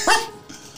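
A dog behind a door gives a single short, sharp bark, fairly loud, then the sound drops to a quiet, faint background hum.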